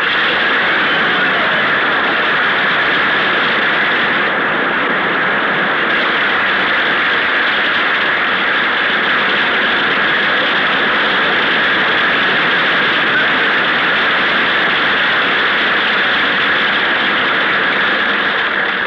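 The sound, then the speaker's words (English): An audience of the AEF applauds loudly and steadily as Gary Cooper is presented as Harpo's interpreter, a dense wash of clapping that holds at an even level for nearly twenty seconds without any voices. “Hey, Bing, he got more applause than we did.”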